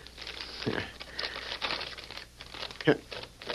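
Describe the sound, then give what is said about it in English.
An envelope is torn open and a sheet of paper unfolded, a few seconds of crisp crinkling and rustling with short tearing bursts, the sharpest crackle near the end. “Let's get that envelope.”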